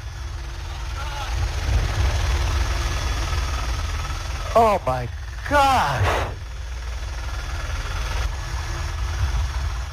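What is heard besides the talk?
helicopter engine in flight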